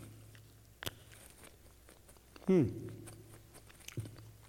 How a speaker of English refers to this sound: Karpas, it's usually parsley, and it should be green because this is symbol of life. Bitter herb, symbol of life. And then what we have to do, we have to dip it, this bitter herb, into salt water, and we have to eat.